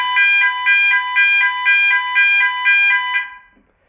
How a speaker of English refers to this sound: Now the next test that we do after resetting the panel is to actually set off the sounders from the panel.